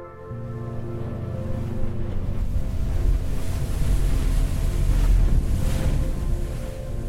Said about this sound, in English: On the boat heading back to the mainland, I look back at Santa Cruz Island as it disappears in the fog behind me.